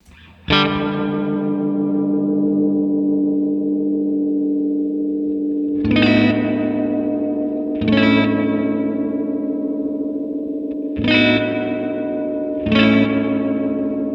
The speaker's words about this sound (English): I've never heard a reverb do that, where it just hangs there like that and floats like a ghost. It's unique.